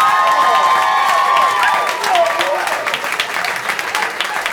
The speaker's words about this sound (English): Because the sex comic is just an honor, and you guys know him, you love him. Give a round of applause for the Fred Armisen, ladies and gentlemen.